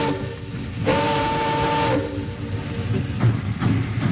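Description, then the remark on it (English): A celery train rumbles steadily through mist-wet rail yards in Los Angeles at night, its horn sounding one sustained, moderately loud blast, followed by a few dull metallic clunks as the cars roll on. “Lonesome there on her caboose steps, I waved into the black Los Angeles night that devoured him in one last dark bite as the celery train slid down the mist-wet yards.”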